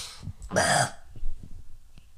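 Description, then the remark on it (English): A single odd, harsh throat clearing bursts out, a short raspy, noisy rush lasting under half a second, preceded by a brief catch and followed by faint shuffling and near quiet. “Sorry, just gotta clear my throat.”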